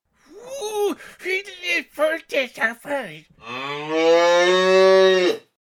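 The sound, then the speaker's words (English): A family's cow, Hilda, moos while upset: first a quick run of short, wavering bellows, then one long, loud, drawn-out low moo that holds steady before cutting off. “The Nisse had upset the family's cow, Hilda.”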